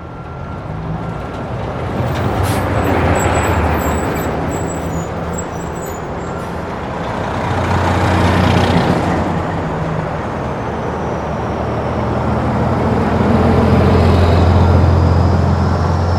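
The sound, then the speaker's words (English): Heavy trucks transporting construction equipment rumble steadily as they roll into Migs Field just before midnight, a deep engine drone that swells and eases in waves over the whole stretch, with no voices. “Just before midnight on Sunday, March 30th of that year, trucks transporting construction equipment rolled into Migs Field, and by early Monday morning, those crews had dug 6 ginormous X's into the lone runway, making it unusable.”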